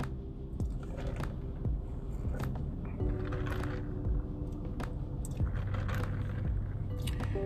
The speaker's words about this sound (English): Just sipping on this lemonade.